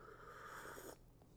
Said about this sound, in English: Hang on, I got hot coffee too. I'm taking a sip of hot coffee.